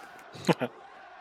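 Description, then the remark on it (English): A wrestling crowd chants the name of wrestler Sabu once, a loud, blurred burst of many voices over a low background murmur. “Crowd chant for Sabu.”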